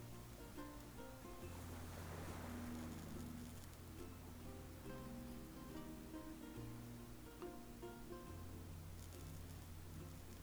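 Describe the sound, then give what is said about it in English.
Gentle turquoise waves on a tropical beach wash softly onto the sand in a steady, swelling hush, blended with sustained, calm musical tones that shift slowly; no one speaks. “The tranquil turquoise water laps lazily on the sand.”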